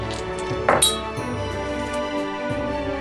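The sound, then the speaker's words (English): Two dice rattle and clatter across a hard surface, a quick burst of sharp clicks and clinks followed by a few lighter taps as they settle on an 8 and a 1, with no voices. “Okay, roll your dice.”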